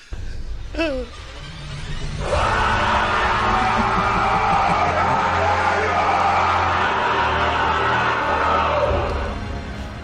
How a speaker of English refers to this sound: There was lots of medieval war cries.